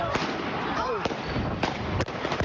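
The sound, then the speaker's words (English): About five sharp gunshots crack at irregular intervals over a dense, noisy background of commotion and panic during a shooting in Philadelphia that left three people dead and 11 injured, with a brief voice-like wail rising near the middle. “The gunfire, the screaming, the panic ended with three people dead and 11 others injured.”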